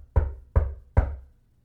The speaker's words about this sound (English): Can you imagine the rejoicing when they heard a knock at the door?